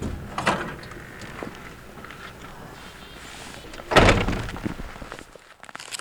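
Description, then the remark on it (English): A front door thumps open and shuts with a solid knock, followed by a few soft, scattered footsteps outside as a woman walks past a 60-inch snow-depth stake toward a rain gauge, a metal cylinder that collects rain and snow, against a quiet outdoor background. No one speaks. “A few steps outside her front door, Cole walks past a 60-inch stake that measures snow depth towards a rain gauge.”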